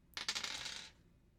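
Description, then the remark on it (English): A quick rattle of percentage dice tumbling across a hard surface, rolled to pick a thriller movie from a Netflix list, a burst of bright clicking clatter that lasts under a second before settling into quiet, fairly loud. “Now we're roll I'm going to roll percentage dice and figure out which movie on that list we're going to watch.”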